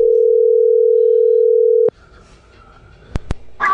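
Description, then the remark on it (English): A loud, steady telephone ringing tone from an outgoing phone call hums for about two seconds, then cuts off abruptly as the call is answered, leaving faint line noise and two sharp clicks. “Holy shit, you answered your phone.”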